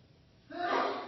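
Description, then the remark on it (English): A single sneeze bursts out after a brief quiet moment, sudden, with a breathy, rushing release that trails off. No one speaks. “Bless you.”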